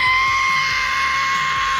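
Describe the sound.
A voice imitates the screech of an F-35 jet as it crashed in Williamsburg County, South Carolina: a loud, shrill, sustained scream held steady for almost two seconds, with nothing else around it.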